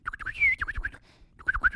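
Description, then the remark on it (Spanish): Quick bursts of high chirping birdsong in spring, several short notes in two clusters separated by a brief pause, moderately loud, with low rumbling noise underneath. “Todo el mundo, hasta los pajaritos saben. Hasta los pajaritos salen.”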